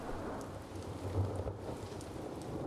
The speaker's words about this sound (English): In late July, there was a big but short thunderstorm which led to severe flooding across London, as the drainage system could not cope with so much rain in such a short period of time. The equivalent of a month in 45 minutes.